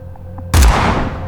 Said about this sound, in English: A shotgun blast as loud as an explosion. Instinctively, like woodland animals, we both crouched, ready to flee if need be. Even the dogs, who were used to gunfire, balked and scattered.